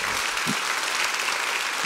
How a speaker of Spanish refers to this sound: Denle un aplauso fuerte a nuestro Dios.